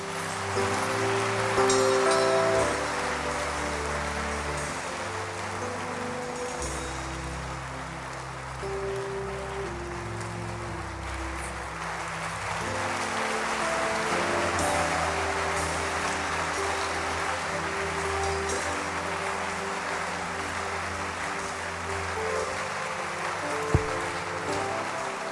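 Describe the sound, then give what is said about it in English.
A church audience claps hands in a dense, steady wash of applause that carries on for the whole stretch, with sustained low musical tones humming underneath and no one speaking. “Clap your hands.”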